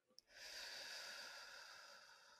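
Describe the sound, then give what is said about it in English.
A slow, deep breath out during a mindfulness breath-counting exercise, heard as a long, steady airy rush lasting about two seconds, preceded by a faint click, with no talking. “Breathing out.”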